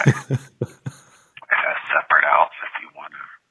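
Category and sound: human body sound, sniffling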